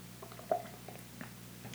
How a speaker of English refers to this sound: Quick water sip. This episode is brought to you by water. Ask about it at your faucet.